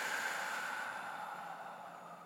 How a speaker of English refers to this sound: Then we're just going to quickly do some forced exhales. So you'll breathe into the heart and then a forced exhale through the mouth.